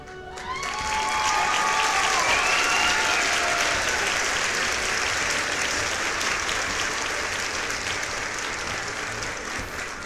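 An award-show audience bursts into loud, sustained applause for the hosts of the inaugural event, filling the whole stretch, dense and steady, with a few whistles rising over the clapping near the start before it slowly eases off.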